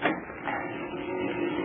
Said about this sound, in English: In here, I'll bet this is the radio room. I will push the heavy door open and...